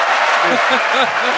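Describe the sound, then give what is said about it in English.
A loud crowd cheers and claps without pause, a dense wash of applause with excited voices shouting through it, filling the whole short moment. “And the crowd goes wild.”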